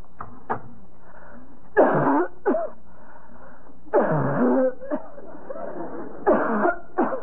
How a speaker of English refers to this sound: Quite a cough, Miss ….